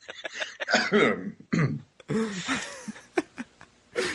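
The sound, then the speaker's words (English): Knights of Shenseen cough as part of their greeting: a series of throaty coughs and throat-clearing noises, several overlapping as if from a few people at once, coming in uneven bursts with brief gaps between them. “Cross our arms, turn our heads, and cough.”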